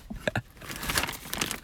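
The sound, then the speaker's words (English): Crinkly plastic rustling and crumpling, a bag holding Amrita snack bars being handled in quick irregular bursts with a few sharper crackles, moderately loud and without any talking. “I've got Amrita Bars with me right now. They're in my, they're in this bag.”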